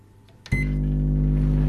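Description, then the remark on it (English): A microwave oven with a used kitchen sponge inside starts up after a brief click and runs for about a minute, settling into a steady, loud low hum with a faint whine on top that continues without change. “We then popped the sponge into the microwave for about a minute.”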